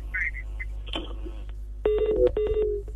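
Two steady telephone dialing tones sound back to back near the end, each lasting about half a second, after a stretch of faint background hum and a few soft clicks, as someone dials a phone number to place a call.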